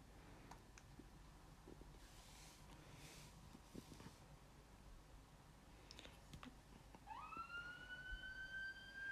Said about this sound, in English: Now I can hear sirens. I'm scared. Not even in the movie, in real life. The fuck? Bitch, why are there sirens?